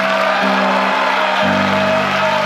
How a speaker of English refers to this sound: Boy, if there's any day, yeah, come on, give the Lord. How about a clap? How about a shout?